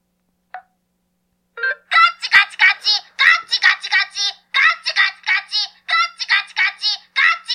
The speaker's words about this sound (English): There we go. That's the segue music. The best segue music.